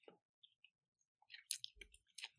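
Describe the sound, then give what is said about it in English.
Quiet chewing with wet clicks and soft crunchy bites, irregular and overlapping as two people eat at once, with no talking. “just cut this part out where we're both chewing”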